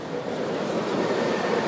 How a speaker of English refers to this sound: That is a passing bus. See, as I said, who needs to edit this in post when I can walk under a bridge and have the echo noise be natural?